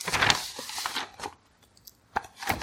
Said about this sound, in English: Dramatic turn of the page.